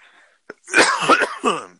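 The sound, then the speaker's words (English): A person coughs a few times in a short, harsh burst after a brief sharp intake of breath; no speech. “Got a bit of a cough, possibly from one of the two things I did in the last couple of days.”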